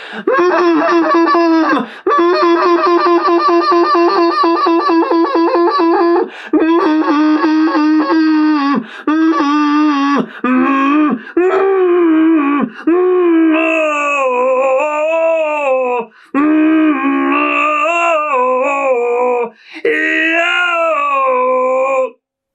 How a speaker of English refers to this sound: And what I'll do is to work all the vowels too at the same time, is I'll hum in my throat, and I'll just do it like this.